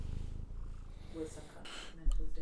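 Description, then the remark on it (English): A cat purrs, a steady low rumble with a fast, even pulse, punctuated by a few soft rustles and a louder thump near the end. “I'm not trying to record the purr of that would be strange.”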